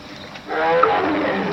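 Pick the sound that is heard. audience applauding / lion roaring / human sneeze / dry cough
lion roaring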